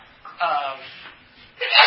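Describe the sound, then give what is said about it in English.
A single sneeze: a short voiced, rising intake of breath followed after a brief pause by a sharp, noisy burst of air at the end. “bless you.”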